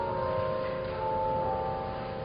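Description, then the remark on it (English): Church bells ring in a steady, sustained wash of overlapping metallic tones that hum and linger at a moderate, even volume, with no one speaking. “So as the bells play, let us not be afraid to consider the deepest magic of this child Jesus, who tonight we find wrapped in bands of cloth and lying in a manger.”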